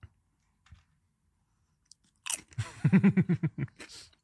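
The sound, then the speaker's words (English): Crunching of salted potato crisps covered in milk chocolate: a sharp first bite followed by a quick run of about eight loud, rhythmic chews, with a few faint clicks in the quiet before. “crunchy, it's salty, with rich sweet chocolate. It's milk chocolate.”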